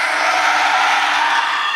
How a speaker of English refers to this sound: All right, that's kind of scary. That one's not bad. Is that a demon? That one, yeah, that was a demonic scream.